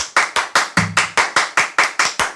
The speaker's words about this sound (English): I like to clap on all the in betweens. Okay. So like if you do the thing, okay. One, gosh. Two, three, four.